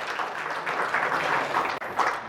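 An audience claps together in steady, dense applause that holds at an even level throughout, with a brief dip near the end before it swells again. No one speaks.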